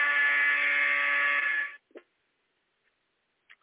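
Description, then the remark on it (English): A loud, steady electronic buzzer from a running timer, played to mark moving on to the next segment, drones for almost two seconds, then cuts off abruptly, followed by a couple of faint clicks and near silence. “I have a running timer that will automatically proceed to the next segment, and I'll play a little buzzer sound here.”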